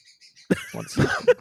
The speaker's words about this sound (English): The bird has an opinion, I guess.